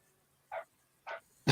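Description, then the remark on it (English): Two short, muffled dog barks about half a second apart, fairly quiet, followed by the start of another sharp sound at the end. “I was waiting to see if the dog would stop by. would stop barking, but I don't think it's going to happen.”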